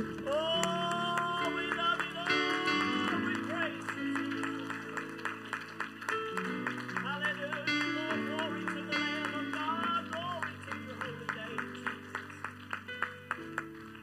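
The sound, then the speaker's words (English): An audience at an evening church worship service claps along in a steady rhythm, raising hands in praise of God, sharp hand claps sitting over sustained keyboard or organ chords, the beat growing more distinct toward the end. “Why don't we just clap and raise our hands and lift Him up together?”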